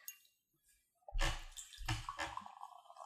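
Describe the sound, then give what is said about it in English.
After a brief near-silence, clear toasted-marshmallow-flavored seltzer gushes into a glass, a loud splashing pour that settles into a steady fizzing trickle. No one speaks. “We pour some and we try it.”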